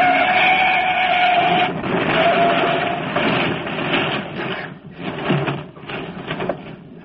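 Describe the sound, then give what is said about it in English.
A loud, prolonged crash of grinding, clattering metal as a truck on the wrong side of the road hits a car's left front fender and headlight and overturns, rumbling on for several seconds with a few choppy breaks near the end as the wreck tumbles over. No one speaks. “He turned over. Says I'm right. Just smashed my left front fender and headlight.”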